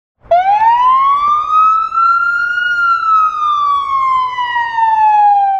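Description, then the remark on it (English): A loud fire truck siren wails in one long continuous tone that rises slowly, holds, then gradually falls, with no talking. “A fire truck siren.”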